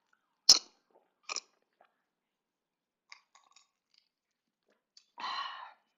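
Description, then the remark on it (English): Drinking sounds of someone taking a quick sip of juice: a sharp click, a short slurping sip, a few faint gulps and mouth noises in near-silence, then a brief breathy exhale at the end. No one speaks. “Gonna take a quick sip.”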